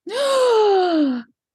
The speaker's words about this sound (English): Everybody gasp. Offended. I'm so offended.